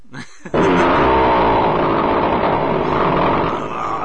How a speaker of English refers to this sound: Chainsaw fart. That's a good one, boy. Oh man, that sounded like my head was directly inside the toilet bowl, farting right next to my face.